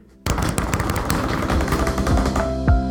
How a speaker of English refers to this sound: Before we go, can we bang the table? Absolutely.